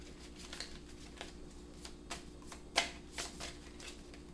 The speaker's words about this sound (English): There's a card I keep seeing as I'm pulling, or should I say shuffling. And I'm curious if it's going to come out.